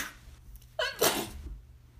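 A single sharp sneeze with a quick inhaled buildup and an explosive burst, standing alone against a quiet background.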